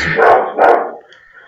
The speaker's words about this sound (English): That dog sounds amazing. So great. Do you want to cut this part out? No, it's fine. I'm sure they'll understand that dog bark.